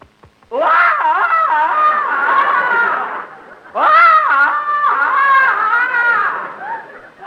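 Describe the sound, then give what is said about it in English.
Mr. Benny lets out two long, loud, warbling Tarzan yells, his voice wavering up and down in pitch, with a brief gasp between them. “Benny, beat your chest and give the Tarzan yell.”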